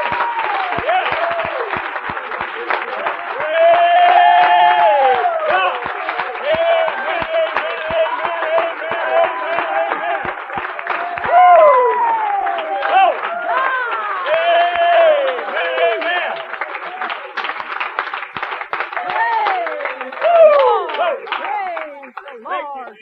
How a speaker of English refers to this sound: But if you feel as good as I do, I want you to just clap your hands to the Lord. Now, this is unto the Lord. Don't you do it now if you're just hypocrites. But if you feel as good as I do, clap your hands.